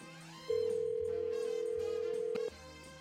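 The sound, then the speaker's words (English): A single steady telephone ringback tone sounds for about two seconds, loud and clear over soft background music, as radio morning-show hosts place an outgoing call to a woman. “So we're going to call her up,”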